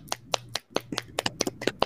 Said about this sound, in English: Round of applause, guys.